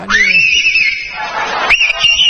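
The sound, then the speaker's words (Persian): A loud, high warbling whistle imitating a nightingale, holding a wavering tone, briefly breaking off, then swooping back up and trilling on, with no talking. “آره … برامون سوت بلبلی میزنه.”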